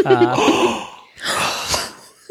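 A woman's sharp gasp at a mentioned gift idea involving a dog, fairly loud: a short voiced, pitched catch of breath followed by a breathy, airy inhale that trails off, with no words spoken.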